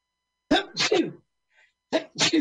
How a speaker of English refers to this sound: Boy, speaking of pandemic. I'm going to talk to Pam Benjamin because I really think we should have a sneeze button, you know, a mute here in the studio.